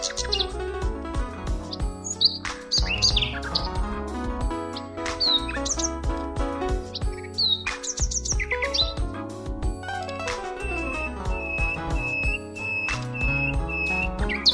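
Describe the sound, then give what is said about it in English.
Wild birds in trees, one in a tree to the left and another in a tree to the right, chirp and call back and forth in quick, bright bursts, with one longer whistled note near the end, all over a dense, continuous layer of lower sound. “The singing of wild birds, one in a tree to the left chatting it up with another in a tree to the right.”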